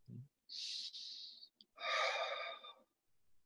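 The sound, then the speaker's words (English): Slow, deliberate breathing: a steady airy inhale lasting about a second, a brief pause, then a longer, fuller exhale, with nothing else around it. “And in that second part with feeling, one can take in the impression of my breath.”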